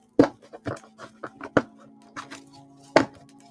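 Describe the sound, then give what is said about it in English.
Irregular sharp taps and riffling bursts of cards being shuffled, a handful of louder snaps spaced unevenly over a few seconds, with a faint steady hum underneath and no talking. “I don't know how loud it gets, but I do apologize when I'm shuffling the deck of cards.”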